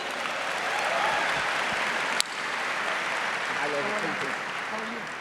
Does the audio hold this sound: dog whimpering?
no